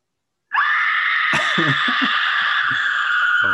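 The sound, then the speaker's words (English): A loud, piercing scream starts abruptly and holds at a steady high pitch for about three seconds without a break, while soft low thuds sound faintly beneath it. “That's a pleasure scream, it sounds like.”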